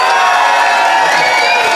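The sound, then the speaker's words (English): A loud crowd erupts in cheering and whooping, with shouts rising over a dense wash of noise from a large assembled audience applauding to vote for one side of a debate, sustained throughout. “So, the assembled audience, if you think Joe and Ben, and therefore Beth, is in the right, applaud now.”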